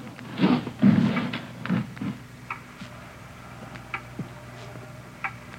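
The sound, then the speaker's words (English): A clock ticks steadily with sharp, distinct clicks, a few heavier knocks early on, then a slower run of lighter ticks over a low background hum. “It's a loud clock, ain't it?”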